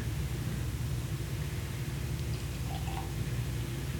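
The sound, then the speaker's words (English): Pumpkin-smelling beer pours from a can, the second can in a tasting, in a steady, fizzy hiss with a low gurgling undertone, ending in a brief soft thump. No one speaks. “We should hear the pour too.”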